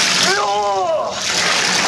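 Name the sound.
water spraying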